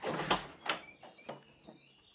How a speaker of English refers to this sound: I'll answer the door, open it up.